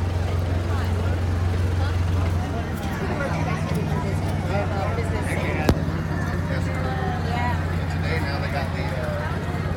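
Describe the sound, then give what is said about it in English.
A car's low engine rumble drones steadily as it rolls by on Main Street on a bright Tuesday, its tone shifting partway through, with chattering voices and crowd noise in the background. “Transportation is still running down Main Street as the car goes by right now.”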